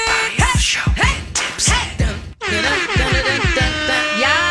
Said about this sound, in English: Always need more air horn.